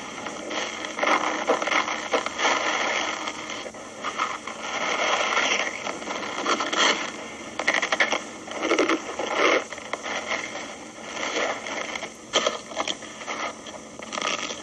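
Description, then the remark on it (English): Baggies plastic food storage bags in an early-1970s commercial crinkle and rustle continuously, with bursts of crisp crackling and scraping as they are squeezed and handled, fairly loud and with no voices. “Foods stored in baggies, plastic bags, always have the sound of freshness, and they always taste as fresh as they sound.”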